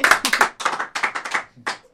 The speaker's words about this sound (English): But another sibling duo who I'm in love with at the moment are opposite me now, and they're going to be doing their second live song, so I'll let you guys introduce it with a bit of applause. Let's have some applause.